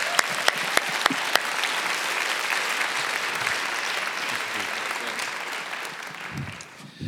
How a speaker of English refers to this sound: So this morning, I want to invite you to give a great rousing applause as the Reverend